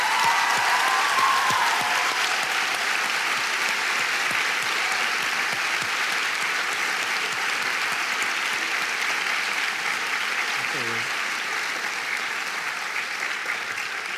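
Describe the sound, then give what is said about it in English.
A large audience claps steadily and loudly, a dense wash of hand claps that holds for the whole stretch and eases only slightly near the end. “Okay, first of all, a round of applause for this.”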